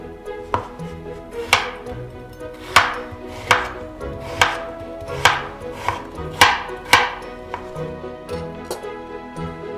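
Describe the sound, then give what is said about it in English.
A knife dices a peeled, cored Braben apple and a cored pear into small dice on a cutting board, with a steady series of crisp chops, about ten sharp thuds in a loose rhythm, with no one talking. “And now we're just going to cut these into small dice.”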